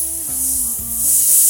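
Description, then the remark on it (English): A door slides open with a loud, steady hiss of escaping air that swells slightly toward the end, over a low mechanical hum. No one speaks. “The door opened with a hiss.”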